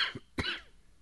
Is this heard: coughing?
yes